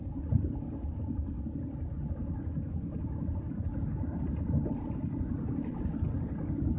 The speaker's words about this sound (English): Yeah, man, I keep wanting to speed up, man. I don't want this fucking tire to fly off this fucking car, man.